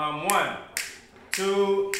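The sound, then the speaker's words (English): Members of a school choir clap their hands in a steady beat during a rehearsal, four sharp claps roughly half a second apart, over sustained sung or hummed vocal tones at moderate loudness. “Everybody come in, we clapping.”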